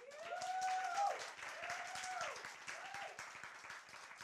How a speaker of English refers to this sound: So come a big round of applause for …